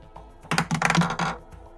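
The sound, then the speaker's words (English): Dice clatter and tumble across a hard tabletop in a quick burst of sharp, bright clicks lasting about a second, then come to rest on a roll of 16. No voices are heard. “And let's roll for this.”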